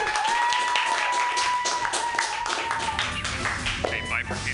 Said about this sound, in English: Your next comedian, I've never met her before, so I can't wait to hear all of her jokes because they're new to me and they're new to you too. So clap wildly, everybody,